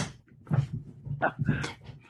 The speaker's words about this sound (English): Somebody knocked at his door.